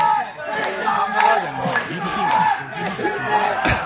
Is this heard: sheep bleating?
no